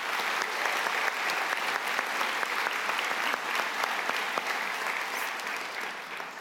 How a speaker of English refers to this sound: So these 5 children, yeah, let's applaud that.